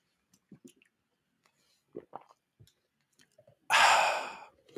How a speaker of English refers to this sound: I'm gonna drink some water. You're all going to have to sit through me drinking water now.